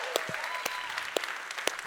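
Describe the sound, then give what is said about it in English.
A rowdy church crowd at Northgate claps hard and steadily, dense overlapping applause with sharp accents, while scattered cheers and whoops rise above it throughout. “My goodness, this is a great rowdy crowd.”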